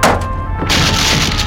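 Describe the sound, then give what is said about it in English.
A heavy wooden door is smashed in with a shield, a loud thudding impact followed by a dense crackle of splintering wood and rattling debris that continues for about a second and a half. “This shield is sure coming in handy today. That's a lot of noise”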